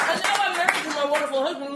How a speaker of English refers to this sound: Round of applause. That is awesome.